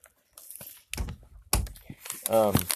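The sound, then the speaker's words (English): Stiff butcher board paper used as packing crinkles and rustles in short, crisp bursts as it is pulled from an opened box of OBS Poker Cards Premium Stock, with a voice briefly murmuring near the end. “They're using the, like, butcher board paper as packing, which is fine.”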